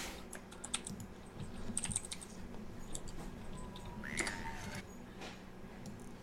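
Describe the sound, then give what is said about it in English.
Clicky typing on a man's mechanical keyboard, a steady, irregular patter of sharp keystrokes with brief pauses and a faint background hum. “Your keyboard is so loud.”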